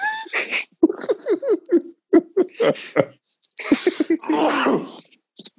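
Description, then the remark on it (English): A loud sneeze bursts out amid some murmured talking, with a second sharp, breathy burst following near the end. “Bless you.”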